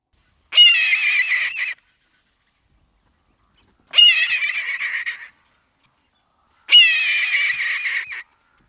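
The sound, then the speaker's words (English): Three loud, harsh screams of an adult red-tailed hawk, each a raspy descending cry lasting just over a second, spaced evenly with silence between them and no other sounds. “That awesome sound is the scream of the adult red-tailed hawk.”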